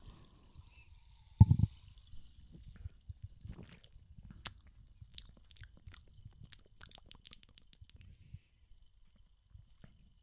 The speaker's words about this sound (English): Damn good. Pretty good. I need another sip, though. If only it wasn't in plastic.